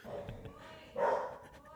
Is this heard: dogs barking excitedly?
yes